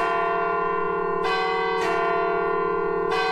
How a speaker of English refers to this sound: The doorway is connected to the ringing of the clock tower. Unless we're on the hour, it'll never